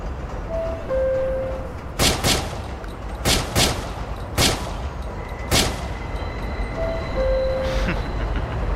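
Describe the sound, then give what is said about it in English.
A burst of sharp gunshot sound effects, several cracking reports in irregular succession over a steady rumbling background with a few faint electronic tones. “You heard the bullets.”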